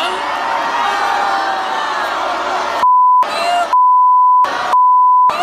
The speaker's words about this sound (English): You gotta bleep one single word, no.